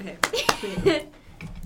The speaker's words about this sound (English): Clap like 2 or 3 times. Ready? Yeah. 1, 2, 3.